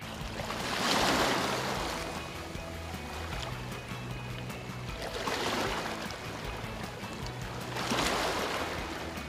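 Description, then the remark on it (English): Waves wash onto a beach in three broad, hissing surges a few seconds apart, each swelling and fading over a steady low rumble of water, with no voices. “Water at the beach.”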